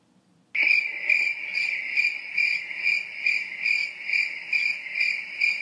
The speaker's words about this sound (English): Yo, what is this cricket? I don't know.